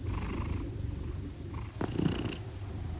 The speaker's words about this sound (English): I was inspired by my own two cats, Calvin and Hobbs. When I have bad insomnia, their purrs are pretty much one of the only things that can lull me to sleep. Wow, so soothing.